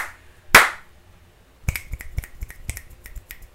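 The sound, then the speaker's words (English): A single sharp, loud slap rings out, followed after a pause by a quick run of crisp finger snaps and light slaps in an uneven rhythm, with no voices. “I took two slaps away, added a couple snaps.”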